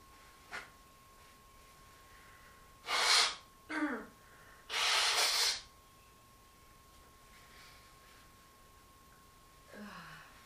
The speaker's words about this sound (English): Ugh, I need to blow my nose, though. I'm sure you don't mind. If I excuse myself into the bathroom for a moment. Blow my nose.